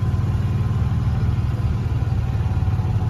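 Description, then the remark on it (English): A vintage John Deere tractor engine idles with a steady, low, rhythmic chugging that stays loud and even throughout, with no voices, at the Wilson County Fairgrounds. “Here's a group of earlier D's, 24s, and a little bit newer, so large flywheels, a lot of unrestored, beautiful tractors.”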